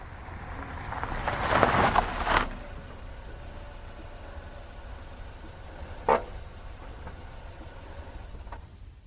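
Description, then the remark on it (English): A car rumbles low and steady as it pulls up at a storage warehouse, with a brief swell of noise early on, then a single sharp click as it settles and parks. No one speaks. “Yes, Miss Rogers, this is it. We can park the car here.”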